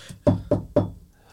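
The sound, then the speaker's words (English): Three firm knocks on a door in a quick, even rhythm, fairly loud, with only a short quiet tail after the last one and no voices. “I think I'll take over here. I'll knock the door this time.”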